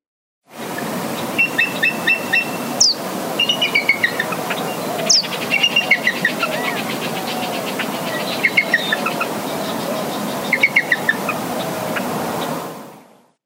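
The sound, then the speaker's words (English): A bald eagle's thin, high-pitched piping calls come in several quick chittering bursts over a steady rushing background, fairly clear, with no one speaking. “Their call is a bit of an unexpected sound from such a regal-looking bird.”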